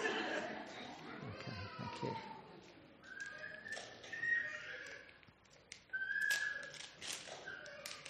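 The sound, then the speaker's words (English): Wrapping paper on a nicely wrapped, unbreakable gift being torn and crinkled open in several noisy bursts over a few seconds, with voices and squeaky exclamations mixed in. “…, will you just come and open this? It's nicely wrapped.”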